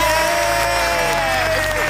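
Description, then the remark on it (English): Steady, loud audience applause with cheering mixed in, a dense wash of clapping with a few rising whoops and shouts over it, lasting about two seconds. “Can we get a round of applause, ladies and gentlemen?”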